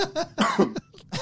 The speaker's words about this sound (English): Just fucking sneeze. I coughed.